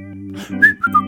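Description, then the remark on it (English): Someone whistles a quick bird-like call, three bright chirping notes that slide in pitch, heard over a steady low humming drone. “Oh, look, a bird, huh? Isn't that nice?”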